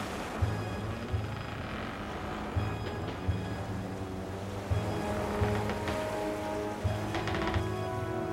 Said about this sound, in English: So please, if you can, turn down the lights, settle into a comfortable chair, close your eyes, and imagine yourself in the middle of the ocean on a sailing ship in 1862. Your ship is pounding into the waves, and a terrible storm is closing in on you.